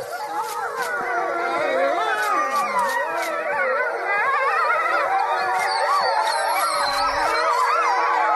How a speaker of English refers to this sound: So in Montana, this family noticed a pack of wolves were howling what they thought were at another pack of wolves. Turns out it was a fire alarm, and it gets very annoying very quickly.